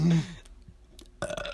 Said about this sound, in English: Wow, you can burp on command? You're gonna throw up. You put so much effort into a very small burp. Yeah, well, the first one's the big one, and then I'm like, there's not much gas left there.